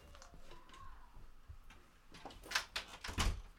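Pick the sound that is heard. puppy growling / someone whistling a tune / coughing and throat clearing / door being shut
door being shut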